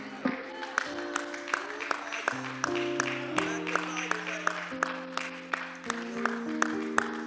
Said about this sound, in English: One more time, clap your hands to the Lord. And just somebody shout hallelujah.